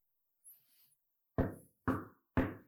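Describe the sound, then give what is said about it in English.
Three loud, evenly spaced, resonant knocks on a door, each fading quickly. A faint, brief rustling sound comes just before them. “and he knocks. He says, God, are you in there? Why don't you open the door?”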